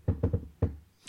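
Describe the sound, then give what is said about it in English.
Four fairly loud knocks on a hard surface, demonstrating how Hispanics in San Antonio, Texas, usually knock: three in quick succession, a short pause, then one final knock, with a faint rustle right at the end. “Because, like, usually, like, here in Texas, San Antonio, Hispanics will knock like this, like.”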